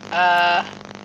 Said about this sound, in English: Somebody's microphone is making horrendous farting noises. There's a lot of crackling.